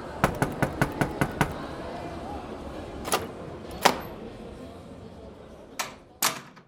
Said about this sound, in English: Anybody in here? I tried knocking.